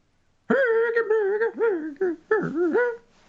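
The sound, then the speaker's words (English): A voice mimics a creaky, unoiled door: a strained, wavering squeal that bends up and down in pitch across about three seconds, broken by a couple of brief gaps, loud and alone. “Because she's a door that needs oiling.”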